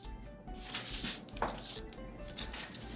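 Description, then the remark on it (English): A metal baking pan of corn pudding clanks and scrapes as a dad slides it onto an oven rack, with a sharp clatter in the middle amid low kitchen background noise. “So now that we're done mixing and pouring it into the pan, Daddy, my assistant, is gonna put it into the oven.”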